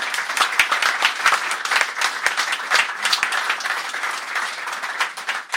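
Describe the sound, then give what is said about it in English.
An audience breaks into a round of applause, dense overlapping clapping holding steady and fairly loud for several seconds. “So a round of applause for Mange and the guys.”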